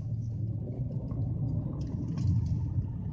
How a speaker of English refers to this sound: There's traffic.